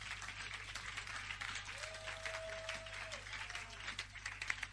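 A church audience claps steadily during preaching, a dense crackling wash of many hands with no pause, a brief sustained tone rising above it midway and a low hum underneath.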